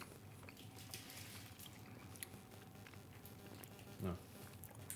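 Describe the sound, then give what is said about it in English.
Soft chewing of chocolate from more than one person, with moist crunching and mouth clicks continuing steadily, and a brief hummed vocal sound near the end. “Just a bit of dead air once we chew.”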